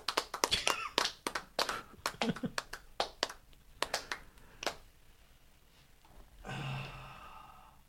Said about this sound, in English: You should do the claps, dude.